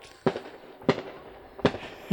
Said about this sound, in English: Are you having a hard time with the fireworks? Mm-hmm. Oh, I like it.